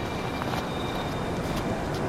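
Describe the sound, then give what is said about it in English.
A train pulls into a station with a steady, heavy rumble and clatter, a faint metallic whine riding over the top. It is continuous, with no voices. “So now I'm behind her as the train pulls up.”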